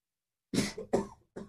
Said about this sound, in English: Sorry, I coughed in my hand, so I won't offer my hand and I won't even bump it. I'll use my elbow.